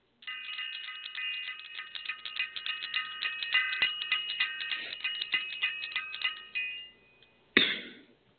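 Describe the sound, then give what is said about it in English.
A ritual bell, rung for the attunement of the planet, rings with rapid, repeated strikes, its bright high overtones sustaining steadily for about seven seconds before dying away, then one last sharp ring. No one speaks. “I'm going to just ring the bell for the attunement of the planet.”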